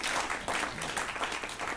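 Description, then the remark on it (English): A crowd at a church service applauds steadily, celebrating the kids being back, dense overlapping claps filling the room at a consistent, fairly loud level throughout the short burst, with no one speaking over it. “Let's have a round of applause for that.”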